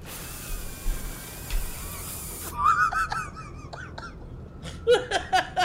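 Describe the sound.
A voice imitates a spraying water hiss: a steady, breathy, high-pitched sound held for a couple of seconds, followed by bursts of laughter.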